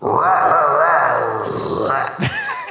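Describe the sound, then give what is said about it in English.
A human voice imitates a baby panther's roar with one long, strained, growly cry that wavers in pitch, ends in a rough rasp, and is followed by a brief breathy noise. “Let's hear your best panther roar.”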